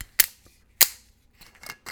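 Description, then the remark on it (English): A large screw cap being twisted off a bottle of Frangelico liqueur: two sharp, loud snapping clicks as the seal breaks, followed by a softer, scratchy rasp of the cap turning, with no talking. “It's got a screw cap.”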